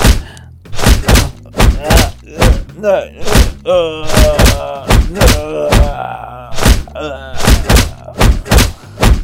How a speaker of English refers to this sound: Yeah, go on, here's a pole, here's some fucking dusters, start beating the shit out of him.